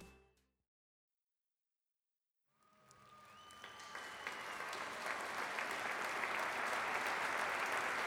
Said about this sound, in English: They could all hear the crowd from their dressing room. The audience was still roaring, and the place was electric.